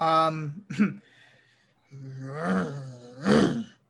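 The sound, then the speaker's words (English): A person imitates a chimpanzee with loud, strained harmonic hoots and shrieks in short bursts, a brief pause, then a longer rising call ending in a sharp screech. “Do a chimp thing right now. Say a chimp or be like a chimp for that.”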